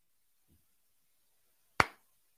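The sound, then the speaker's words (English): A single loud, sharp hand clap rings out after near silence, the opening beat of a slow clap, preceded by a faint low thump. “I'm starting a slow clap for you”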